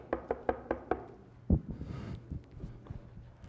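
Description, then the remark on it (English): A quick run of five evenly spaced, crisp knocks on a door, followed by one heavier thump and some faint shuffling noise. “So I can imagine she's in her house and she hears a knock at the door.”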